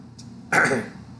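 One short, harsh cough from a person who has just eaten a Whataburger, a sudden burst that fades within a fraction of a second against a quiet background, with no talking.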